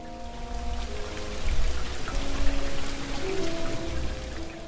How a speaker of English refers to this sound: It was raining again on the night of January 30th.